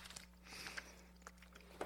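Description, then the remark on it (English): Soft, wet, vigorous chewing and mouth clicks of a person eating come in uneven little bursts over a steady low electrical hum, with no talking. “I'm vigorously chewing.”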